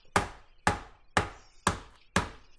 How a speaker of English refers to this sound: All right. It's that time. Hammer some meat. Yeah. This is so cathartic.